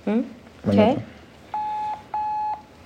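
Phone call dialing tones: after a few brief spoken sounds, two steady electronic tones of about half a second each ring out, evenly spaced with a short gap between them, clear.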